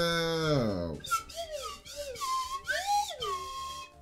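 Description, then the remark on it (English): A slide whistle, played as a sound effect, glides steadily downward in pitch, then plays a run of quick swooping notes that rise and fall in short arcs, fairly loud throughout. “All right, we got the slide whistle, bro.”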